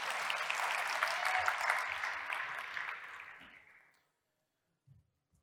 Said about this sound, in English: If you're going to applaud, let's do it properly. Come on.